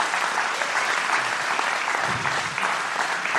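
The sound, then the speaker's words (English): Steady, dense applause from an audience at Hope City Church for the staff who have come up, a continuous wash of many hands clapping at a fairly loud, even level throughout, with a faint murmur of voices underneath toward the end. “I think for me, thank you for those applause”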